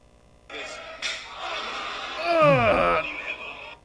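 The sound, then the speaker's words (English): A single sharp, smacking wrestling chop to the chest by Walter, from a Defiant Wrestling match, then a loud, drawn-out pained wail whose pitch bends and slides before trailing off, all over a steady hiss. “So I'm going to put it close to the mic, and you'll hear.”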